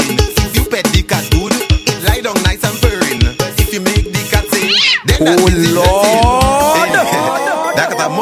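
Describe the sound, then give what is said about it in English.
A cat meows repeatedly in drawn-out, rising cries, set against a loud, busy musical backing with a steady thumping beat that carries on throughout. “Puss, puss, come and meet me. Hello, Kitty.”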